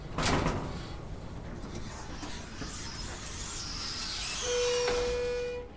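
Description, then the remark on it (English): An elevator's sliding door rumbles shut with a mechanical whir, followed by a steady electronic beep and a faint high tone as the car settles, fairly loud. “The door closes and the buttons light up.”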